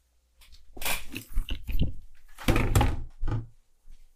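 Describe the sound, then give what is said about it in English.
A door being unlocked and opened: a run of metallic clicks, rattles and thunks over about three seconds, ending with a couple of softer bumps. “I gotta open the door”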